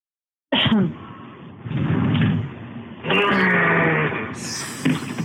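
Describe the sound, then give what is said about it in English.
A man's voice imitating a horse's whinny, loud shaky neighing bursts with wavering pitch, several in a row with short breaks between them, and no words spoken. “But now that they when they realized that they were louder, his whinnying.”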